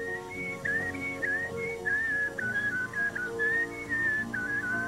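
A man throat-whistles a bright, wavering tune, the melody gliding and bending between notes over a steady low musical backing. The whistling is continuous and loud, with no talking.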